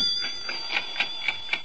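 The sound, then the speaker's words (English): Steady ticking heard through a telephone at about 1 a.m., about six sharp, bright clicks spaced roughly a quarter second apart, growing slightly crisper over a faint constant high-pitched whine, with no voices. “What's that ticking?”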